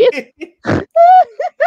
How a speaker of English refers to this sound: She's snoring, man. Why are you snorting, you crack smoker?